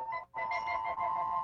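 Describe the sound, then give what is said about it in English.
A phone notification ringtone for a Twitter mention sounds: a bright, steady electronic tone with a short break early on, then continuing at a constant pitch with shimmering overtones, fairly loud and with no talking. “Oh, shit, that's a good ringtone.”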